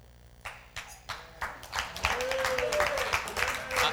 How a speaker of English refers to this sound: I assume you're clapping for Stephanie because you won't clap after I'm done.